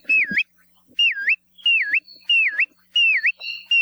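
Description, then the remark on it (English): A bristle-thighed curlew (kioea) gives a series of five loud, clear whistles, each swooping down then back up, repeated at an even, steady pace with no talking. “If you see a bird near the shore with a really long, downward curved bill, with a call that's been described as sounding like whistles of an adoring pursuer, you're probably looking at a kioia.”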